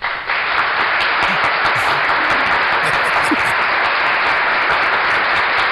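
Dense, steady applause from many hands clapping at once, a loud continuous wash of claps that holds evenly for several seconds without a break or any talking.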